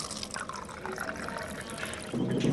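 Water pours steadily from a water cooler in a church basement into a cup, a continuous splashing stream that grows slightly fuller and louder near the end.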